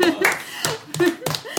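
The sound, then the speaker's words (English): A brief round of clapping: several sharp, loud hand claps in an uneven rhythm, with voices murmuring underneath between the claps. “Round of applause for all of us.”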